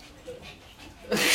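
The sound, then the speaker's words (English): Dogs make goofy whining, yipping noises over a low background murmur, followed by a sudden louder, harsh burst of sound at the very end. “Bro, some goofy ass dogs.”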